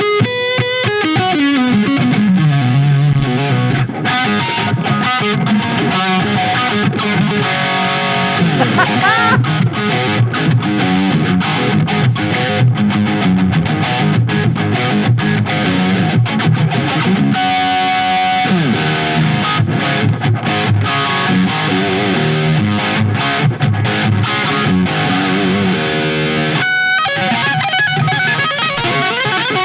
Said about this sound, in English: I mean, I don't know if you can hear, but this is the clean channel. And it has like a gain where you can crunch it up a little bit just for channel one.